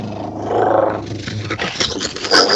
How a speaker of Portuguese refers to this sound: Esse foi o teleporte através da descarga do banheiro.